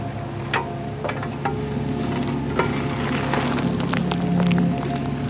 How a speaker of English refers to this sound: The excavator scoops out the final clump of grassy dirt. And just like that, the pool of water above the plug begins to drain.